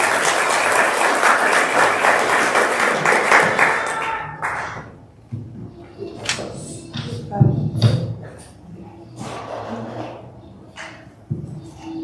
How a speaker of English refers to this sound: Let's give a round of applause, church. Come on, she's for you.